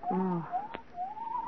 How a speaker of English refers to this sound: What was that? There was an owl outside the house.